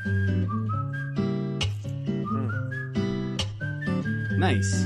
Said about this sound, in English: Oh, yeah, there it is. Yeah, that's nice. You know, there should be more whistling in video game soundtracks.